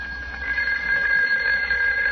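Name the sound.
telephone ringing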